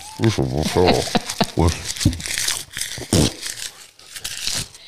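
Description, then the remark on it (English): Crinkling and tearing of paper mixed with crunchy chewing sounds, scattered in irregular bursts, with voice-like sounds over the first part, as a man on a radio programme pretends to eat paper. “He's eating paper.”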